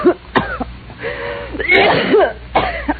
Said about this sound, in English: You got a bad cough, you need some sun. I need more than that. Yeah, I guess you do.